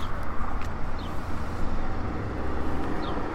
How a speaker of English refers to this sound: Ooh, big old party bus. Party bus.